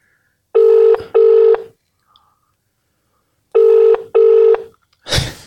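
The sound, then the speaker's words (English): A phone ringback tone on an outgoing call from Fulham Football Club in England to Limonest Saint Didier: two steady buzzy rings in quick succession, a pause, then another double ring, followed by a brief burst of noise as the line is picked up. “Can't believe it's ringing.”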